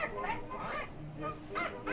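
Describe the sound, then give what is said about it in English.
A cartoon parrot squawks as it is attacked, in a string of shrill, honking bursts across two seconds, loud, with a busy low background beneath the cries. “He just attacked a parrot?”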